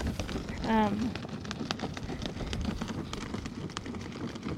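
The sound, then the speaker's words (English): Dense, steady crackling of water rushing through siphons at a lake, filling the whole stretch with fizzing pops and a low rumble, broken early by a brief tonal vocal sound. “So that crackling sound is the sound of water moving through the siphons.”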